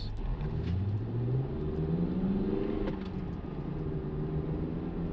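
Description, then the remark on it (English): A car engine rumbles steadily, its low drone wavering and surging unevenly as the car jerks after being taken out of eco mode, with no voices present. “Why is my car jerking? We're not supposed to jerk like this.”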